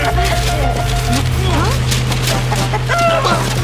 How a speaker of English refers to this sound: Chicken!